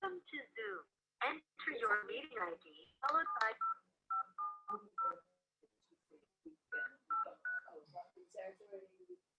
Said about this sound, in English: Oh, I'm dialing back in again.